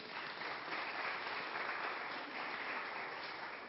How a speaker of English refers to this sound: If you want to clap for that, though, then that's okay for you, too.